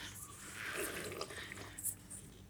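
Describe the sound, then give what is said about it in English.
A wet, hissy slurp of a drink, the Cat Amongst the Pigeons from Adelaide, with gurgling, sucking noise rising and falling over a couple of seconds and a brief sharper sip near the end. No one speaks. “Slurp. That was it.”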